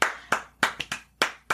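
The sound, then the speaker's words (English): A few sharp hand claps in an uneven rhythm, six crisp slaps over about a second and a half, each bright and snappy with a quick decay, no voices. “Clap for the kids.”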